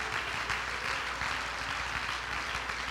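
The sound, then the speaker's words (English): A crowd clapping hands together, a dense, steady wash of many overlapping claps that fills the space evenly for several seconds, fairly loud and without any voices over it. “Clap your hands if you believe that.”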